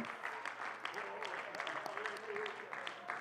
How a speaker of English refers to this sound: Clap your hands unto the Lord if you're glad you got the Holy Ghost.